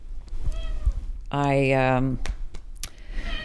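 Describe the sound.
A single loud, drawn-out cat meow, close to the microphone and lasting under a second, with quieter voices murmuring just before and after it.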